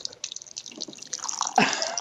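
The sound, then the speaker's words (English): Boiling hot water for making tea pours from a water cooler tap in a steady trickling stream with bubbly splashing, growing fuller and louder near the end as the cup fills. “I was going to get it through the Keurig, but now I'm getting it through the water cooler, even though it's boiling water.”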